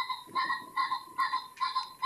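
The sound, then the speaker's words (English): A pheasant calls in a rapid run of about five harsh, nasal bursts, each a buzzy, ringing note repeated at a steady rhythm, with no voices. “That's a pheasant. It is a pheasant.”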